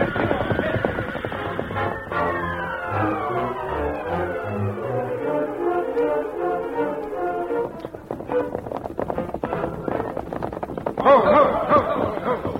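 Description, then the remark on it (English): Dramatic music swells, then gives way to a rapid drumming of horses' hooves as a group of riders led by Jim King reins up in front of the Calloway ranch house; the hooves slow and stop, with a horse whinnying near the end. “Jim King was at the head of the group that reined up in front of the Calloway ranch house.”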